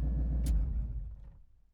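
A truck's low engine rumble winds down over a couple of seconds, with a brief hiss early on, before fading almost to silence as it comes to a stop by the side of the road.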